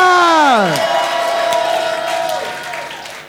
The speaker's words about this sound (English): I said, receive it. And give Jesus a clap and a shout.